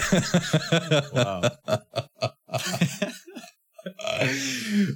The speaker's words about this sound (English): I had no plan to make that noise. I went to cough on something, and then I didn't want to cough, so I tried clearing my throat instead, and all I did was go.